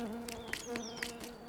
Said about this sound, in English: Oh, no! The bee flew away! You must have scared it off, Alph.